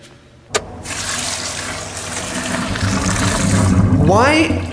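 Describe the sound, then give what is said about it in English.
Water gushes steadily up out of a sink drain after a sharp click as flooding overwhelms the pipe system, a loud, continuous rush that swells slightly and ends with a few rising gurgles. “How could this not be overwhelming our pipe system? It is overwhelming our pipe system. Look at my sink.”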